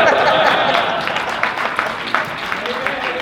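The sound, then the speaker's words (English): An audience claps hands in a loose, uneven rhythm, sharp claps popping out over a dense wash of crowd noise that stays fairly loud throughout. “I'm about to start saying, clap your hands, people.”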